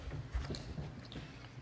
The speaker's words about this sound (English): But she's also chewing pizza right now, so she just